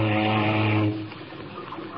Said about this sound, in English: Say, don't you ever use your fog horn? Not up here. Except now and again to tell if we're close to an iceberg. Sometimes the sound will bounce off.